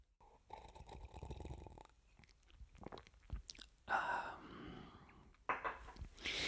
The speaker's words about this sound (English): In fact, I'm going to take a sip right now.